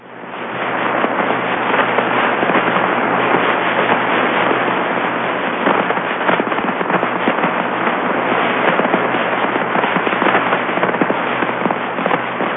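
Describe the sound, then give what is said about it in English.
Dense, continuous crackling static from Jupiter's low-frequency radio emission, S bursts from Jupiter's magnetic poles, recorded in real time by Dick Flagg at the University of Florida: a steady hiss packed with rapid popping bursts, loud and unbroken for the whole stretch, with no voices. “This is low frequency radio emission. And it's coming from the magnetic poles of Jupiter.”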